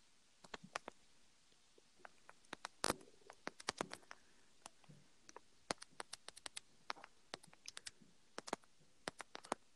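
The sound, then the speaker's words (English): Rapid, irregular clacking of keys on a computer keyboard as someone searches something on Google, with bursts of quick presses and short pauses, fairly quiet, with no talking. “Nothing, just the typing.”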